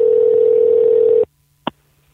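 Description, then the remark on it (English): A steady, buzzing telephone ringback tone sounds for about a second on an outgoing call, then cuts off abruptly, followed by silence and a single short click. “Answer. Does he have voicemail? The goddamn phone.”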